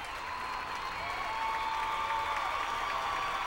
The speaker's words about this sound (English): Wow. There was a guy. Did you hear him? Woo! You guys have to cheer every time we give a congratulations or something great happens. You guys are just so good at that.